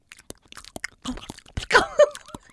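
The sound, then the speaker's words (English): Loud, crunchy chewing, a rapid series of sharp, uneven crunches with wet mouth noises, growing thicker and heavier toward the end, with no voices. “Like a horse eating a carrot.”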